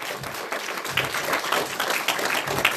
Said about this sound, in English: Now give God a good hand clap this morning.